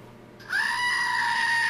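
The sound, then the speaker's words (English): A small hairless plastic screaming goat toy is squeezed and lets out a single loud, sustained goat-like scream, high-pitched and nasal, starting abruptly and holding steady with no talking. “The screaming little goat toy.”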